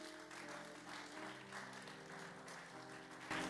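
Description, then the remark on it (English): An audience claps steadily and densely for a few seconds, fairly loud, with sustained musical tones running underneath and a brief swell near the end. “I thought you are clapping.”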